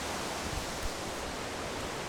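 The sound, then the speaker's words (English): A steady, dense roar of rushing water from a waterfall on a hike fills the whole stretch, unbroken, with only faint low thumps underneath and no voices. “You hear that? That's the waterfall.”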